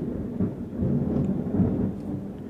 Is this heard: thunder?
yes